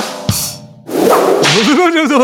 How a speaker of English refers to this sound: I don't know why I hit that whip button. That was the wrong button.